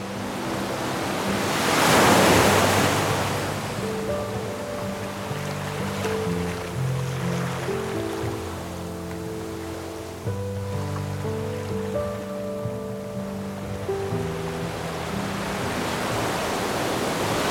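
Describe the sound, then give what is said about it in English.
Sea waves surge and break on the shore of Sagar Island, one loud swell cresting early before the surf settles into a steady wash beneath soft, sustained musical tones. No one speaks. “The story I'm telling today is supported by nature sounds which are recorded by the sea here on Sagar Island.”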